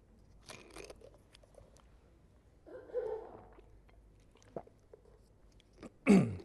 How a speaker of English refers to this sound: excuse me, I might just drink a little bit of water.